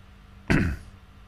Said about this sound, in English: Excuse me, just clearing my throat.